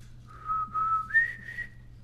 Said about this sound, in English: Mom, you can whistle. I remember when you used to whistle all the time when I was a kid.